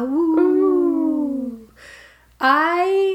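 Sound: imitated wolf howl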